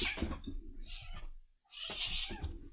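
A female cat yowls angrily, two drawn-out, harsh meows separated by a brief pause, loud and strained like a caterwaul.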